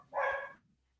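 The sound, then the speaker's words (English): A single short dog bark, bright and fairly loud, ringing out alone before quickly fading to quiet. “I'm sorry, I have my dogs barking.”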